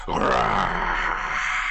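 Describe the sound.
A voice imitates a bestial roar coming from a corridor during a ritual. One sustained, gravelly growl lasts under two seconds, loud and rough throughout with a harsh raspy texture, easing slightly toward the end.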